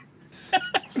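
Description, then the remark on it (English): A sharp sneeze bursts out, with a couple of short breathy, voiced bursts around it in quick succession against a quiet background. “Bless you.”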